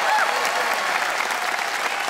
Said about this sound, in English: Audience, it is up to you to vote by applause.